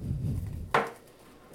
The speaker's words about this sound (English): It's very hard to get saran wrap off of a bowl with one hand.